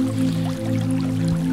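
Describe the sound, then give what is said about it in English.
A steady wash of falling water rushes throughout, layered with soft, sustained ambient music tones humming low underneath. Both stay even and continuous, with occasional small drips and splashes surfacing. “We hear a waterfall with some nice ambient music.”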